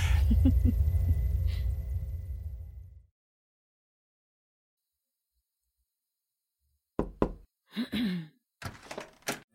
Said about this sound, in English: Since when did you need a knock to come into my office?